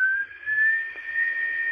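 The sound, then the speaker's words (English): A stovetop coffee pot whistles steadily as coffee brews, one sustained high-pitched tone that holds without a break and climbs very slightly in pitch, heard alone with no talking. “And we've got the old pot, the whistling pot.”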